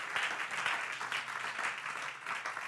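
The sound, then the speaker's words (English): An audience claps steadily as a hand clap of praise to the Lord, the dense applause a continuous wash of hand claps that holds at an even level from start to finish. “Let's give the Lord a hand clap of praise in this place.”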